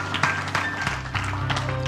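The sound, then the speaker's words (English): An audience at a morning church service gives the Lord a hand clap of praise, clapping in a dense, steady patter, with sharper bursts standing out every few moments over sustained musical tones and scattered voices. “Give the Lord a hand clap of praise and a shout this morning.”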